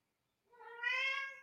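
A single meow from the speaker's cat, Bruno, drawn out and rising in the middle before trailing off, clear with no talking around it.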